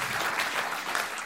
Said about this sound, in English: I think that's worth a round of applause, don't you?